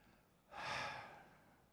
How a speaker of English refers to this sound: Okay, you ready? Did you practice breathing? You can all do this. You can breathe. Let's exhale.